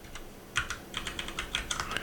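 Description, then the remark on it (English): Rapid, irregular keystrokes clatter on a computer keyboard, a steady flurry of light clicks with no talking. “I hear typing.”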